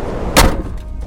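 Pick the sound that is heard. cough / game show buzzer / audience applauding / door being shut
door being shut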